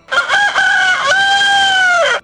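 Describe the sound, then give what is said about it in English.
A rooster crows once, loud, a full cock-a-doodle-doo with a few choppy opening notes and a long sustained final call that trails off. “And immediately, while he was still speaking, the rooster crowed.”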